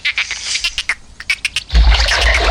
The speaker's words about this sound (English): All right, that sounds like a toilet flushing. That sounded like someone flushing a dolphin down the toilet. That's what happens when I go and I pull the first clip of a dolphin.